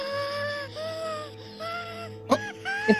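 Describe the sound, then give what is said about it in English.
Littlefoot, a cartoon baby dinosaur, lets out a series of drawn-out, high-pitched wavering cries, somewhere between a yawn and a scream, ending with two short sharp yelps. No one speaks over it. “I said, "Little baby Littlefoot yawns or screams."”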